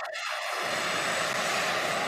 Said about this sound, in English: It's a helicopter drone. It didn't have a dong on it, but it needed one for protection. Wow. That's a serious freaking helicopter.